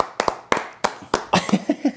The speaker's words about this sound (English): Edit in a round of applause.